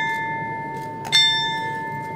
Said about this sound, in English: Aboard the Midway, the two-bell ceremony, remembering Pearl Harbor vets no longer with us.